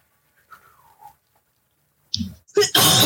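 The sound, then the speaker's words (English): A single sharp sneeze: a short breathy intake, then a loud, explosive burst. Before it there is only quiet, with a faint murmur. “Bless you.”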